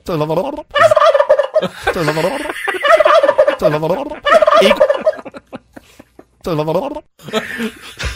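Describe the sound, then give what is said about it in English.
A person loudly imitates a rooster crow, giving a series of about six warbling, wavering calls separated by short pauses. “I like that little rooster noise you make, too, at the end.”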